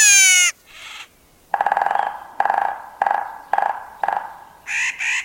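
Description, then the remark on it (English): Nutcracker calls in a varied sequence: a high whistling sweep, then a run of five harsh, grating caws at a steady pace, ending in two brighter squawks, clear with no talking. “They're very talkative. They have all kinds of different calls, not just the one that I performed for you earlier.”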